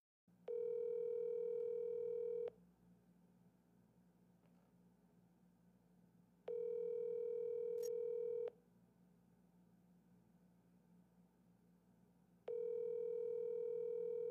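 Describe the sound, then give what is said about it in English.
A phone line's ringback tone purrs in three steady two-second bursts with long quiet gaps between, clear and fairly loud over a faint background hum; nobody speaks. “Is there anything bleaker than that third dial tone?”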